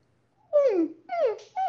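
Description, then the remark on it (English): A high falsetto voice makes three quick descending whimpering glides, fairly loud, like a puppy's whine, with short pauses between them; a singer's vocal exercise testing the head voice. “It kind of feels like a puppy dog sound right there.”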